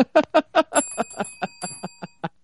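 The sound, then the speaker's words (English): A bicycle bell rung rapidly and repeatedly, about a dozen quick metallic dings in a steady rhythm, fairly loud, with a bright ringing tone lingering between strikes. “Oh, the inappropriate bell!”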